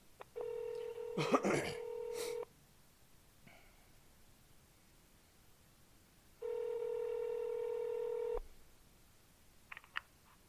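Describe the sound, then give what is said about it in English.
Telephone keypad tones during a call to Jet Limousine's automated phone menu, pressing 0 to speak with a member of the team: two long, steady, buzzy electronic tones about four seconds apart, a brief harsh burst over the first, and a few faint clicks at the end. “Or press 0 to speak with a member of our team. Press 0.”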